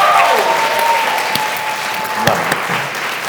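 An audience claps together in steady, dense applause that fills the whole stretch at a fairly loud level, with a faint sustained tone ringing underneath and no one speaking.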